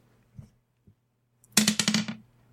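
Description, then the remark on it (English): Typing on a computer keyboard: two isolated clicks, then a quick flurry of rapid keystrokes lasting about half a second, over a faint low hum. “He's punching the computer right now.”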